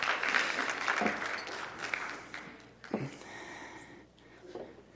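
An audience applauds with dense, steady clapping that gradually thins out and fades over about five seconds, with a few scattered claps at the end.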